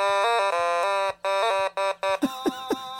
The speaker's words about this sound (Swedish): Otamatone, det är ett av världens nyaste instrument. Jaha. Det ser ut som en gullig liten not.